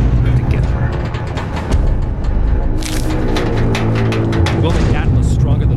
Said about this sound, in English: I can scan my hand. Ooh. Laser beams change colors. Big old doors opening.